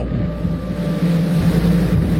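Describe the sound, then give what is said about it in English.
Loud, steady roar of Hurricane Ian's wind in Punta Gorda with a deep rumbling undertone like pounding waves, continuous, buffeting the microphone; a voice speaks briefly. “Winds and waves.”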